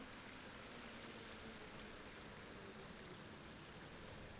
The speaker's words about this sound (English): And you can hear that sound. You can see the waterfall about 60 feet away coming down the side of the hill. So let's walk down there. It's a small waterfall